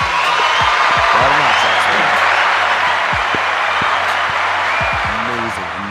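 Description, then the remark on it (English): A crowd applauds loudly and steadily, with dense clapping mixed with cheers and whoops, the roar holding strong throughout before easing slightly at the end. “I'm calling applause, man. I'm calling applause.”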